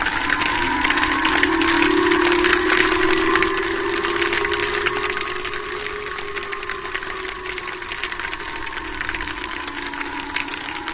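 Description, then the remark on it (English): Air raid sirens going off in Japan wail steadily for the whole stretch, a sustained droning tone whose pitch slowly rises and sags, layered over a dense crackling, hissy background with no talking. “So these are air raid sirens going off in Japan.”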